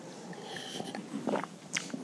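Someone takes a quick sip of water: a few soft slurping and swallowing mouth noises with faint clicks, quiet and brief, with no talking.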